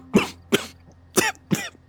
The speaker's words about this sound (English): He coughed again, and this time a glob of gold snot shot out his mouth and stuck to one of the jars. He ain't see it or he ain't care. What he was sputtering on, he'd like to hock up a lung and kill over.